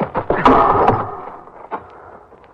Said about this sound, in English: They're closing the other door. Get that for us, darling.